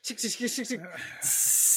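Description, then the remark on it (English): A voice mimics a spray can: a quick run of five or six short, breathy 'pssht' bursts, then one loud, steady hiss held until the end. “He just spray paints over the dead body.”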